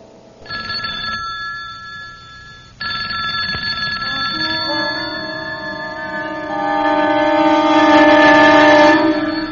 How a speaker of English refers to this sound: Late at night, in a quiet house, the telephone in an upstairs bedroom begins to ring. Its ringing penetrates the defenses of the subconscious mind, alerting, awakening.